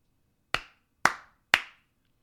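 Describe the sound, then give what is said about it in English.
Three sharp hand claps, evenly spaced about half a second apart, each crisp with a quick decay, made at the start of a recording to sync the audio to the video. “So you do three claps. Yeah. So that you can sync the audio to the video.”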